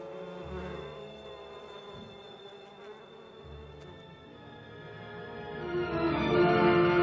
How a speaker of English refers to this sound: 11 days afterwards, you will find the house full of bees, hanging together in clusters, and nothing left of the ox but horns, bones, and hair.